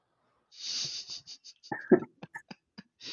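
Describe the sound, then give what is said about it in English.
A person huffs and puffs, mimicking heavy breathing: a long hissing exhale followed by a string of short, voiced gasps and puffs, some wheezy and uneven. “Let's run at each other and touch, and then let's get huffing and puffing and breathing real heavy on each other and maybe cough a little bit and sneeze in each other's mouths.”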